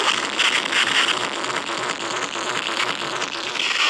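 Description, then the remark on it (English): Harsh abrasive noise music: a dense, loud wall of hissing, grinding static that churns steadily for the whole stretch with small flickering pulses and no voices. “So, yeah, super abrasive.”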